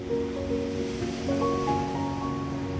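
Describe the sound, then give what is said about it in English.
Steady ocean surf washes in a continuous rushing hiss, even in loudness, with soft sustained musical tones drifting over it. No one speaks. “Now it's time to move into the waves. Feel them washing past you.”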